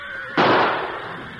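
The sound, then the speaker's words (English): A single sharp gunshot in a western radio drama, fired at a gray mare next to a corral, cracks out of a low steady hum, its loud burst fading away over about a second. There is no talking. “Good shot, Pete.”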